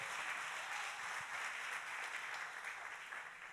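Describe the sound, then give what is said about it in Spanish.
Steady, dense applause from a crowd giving a loud round of applause to the Lord, a continuous wash of many hands clapping at a fairly even loudness for several seconds with no voices standing out. “Dan un fuerte aplauso al Señor.”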